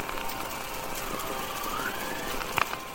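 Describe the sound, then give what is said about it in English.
Saturn kilometric radiation radio emissions recorded by the Cassini spacecraft as it studied Saturn: a steady wash of crackly hiss with a faint rising whistle-like glide midway and a cluster of short bright chirps near the end. “And this is a composition that the group …, which I'm part of, created, which uses these recordings made from the Cassini spacecraft as it was studying Saturn.”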